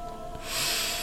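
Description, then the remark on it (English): A single deep, airy breath taken during a breathing exercise, rising from a quiet start into a steady rushing sound that fills the second half, with no one talking. “Now keep on breathing.”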